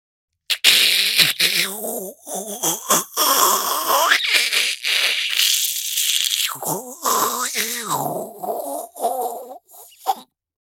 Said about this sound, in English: Espresso machine.